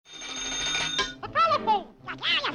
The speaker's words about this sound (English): The telephone?